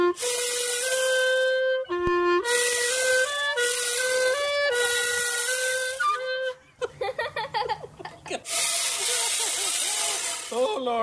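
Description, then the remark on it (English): A chainsaw clarinet, a small chainsaw mounted on the horn part of a clarinet, makes a buzzing, motor-like tone playing a wavering melody of sustained pitched notes with sharp harmonics, shifting pitch in steps, then breaks into a sputtering, stuttering rattle before one last droning note. “Somebody combined music and power tools and came up with a chainsaw clarinet.”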